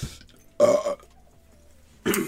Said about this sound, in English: I thought it would work if I burped on it.